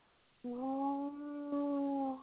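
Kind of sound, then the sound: vocal imitation, voice imitating a foghorn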